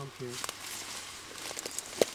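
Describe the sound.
Uneven crunching and rustling footsteps of a person walking off path through dense weeds and brush in the woods, with scattered twig crackles and a brief hum of voice near the start.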